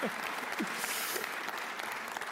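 A church audience claps steadily, a dense, continuous patter of many hands at an even level, with a few faint whoops rising briefly above the applause, giving a warm round of applause to welcome a man.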